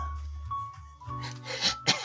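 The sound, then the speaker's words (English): A man's raspy cough breaks into a short wheezy laugh: two harsh bursts near the end over a quiet, low background hum, with no talking. “It seems like he starts to cough, but then he's smiling, and you think it might be a laugh that's just sort of a weird raspy.”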